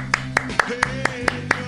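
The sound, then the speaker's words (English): A round of applause in the form of seven sharp, evenly spaced hand claps in a steady rhythm, heard over a low sustained humming tone. “How about a round of applause for Joe?”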